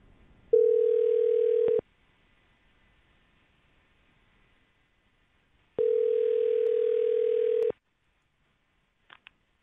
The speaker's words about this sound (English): That was your phone ringing.